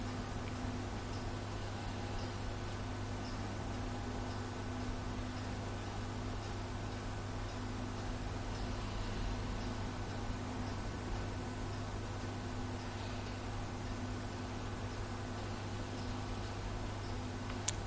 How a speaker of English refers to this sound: And then take a little time to widen your awareness to the sounds of the chapel, ticking of the clock, humming,